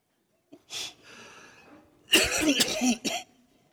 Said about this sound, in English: Now, I'm just going to let you know that the cough has been particularly annoying lately, and even this morning. So I'm going to get us through this as quickly as I can, okay?